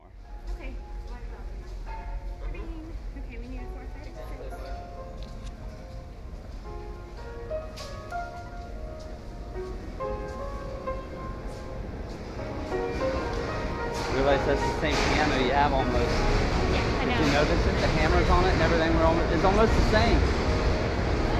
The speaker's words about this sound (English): Anyway, let's go ahead and play just a little bit of this here so that you can hear what I passed here as we came up on him playing in the subway.